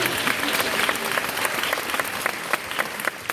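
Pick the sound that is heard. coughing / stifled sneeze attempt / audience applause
audience applause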